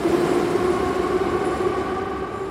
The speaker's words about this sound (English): But now the metro trains are running again. Commuters and families dart in and out of the aging rail cars.